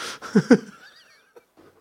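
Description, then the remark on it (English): Someone takes a breathy inhale through a snickerdoodle-flavored air inhaler, with two short throaty bursts followed by a thin, whistling wheeze that fades out. A couple of faint soft sounds trail afterward. “Snickerdoodle in my mouth, breathing it?”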